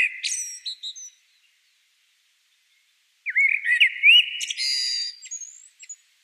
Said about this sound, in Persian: به نظر من آوازخوانی پرندگان مثال خوب از درک موسیقی در دنیای حیوانات است.